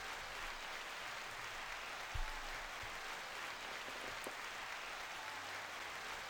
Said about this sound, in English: So hand claps for that.